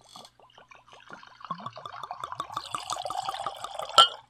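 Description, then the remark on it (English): A drink glugs and splashes as it's poured into a glass, rising in pitch as the glass fills, ending with a bright clink. Fairly quiet, with no voices. “let us pour and salute.”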